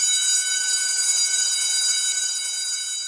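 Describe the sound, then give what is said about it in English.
A school bell rings without pause at a K-12 school named after Marie Curie, a steady, shrill metallic clang with bright high overtones that holds at an even loudness throughout, with no voices. “Their parents drop them off just in time before the bell rings in front of school.”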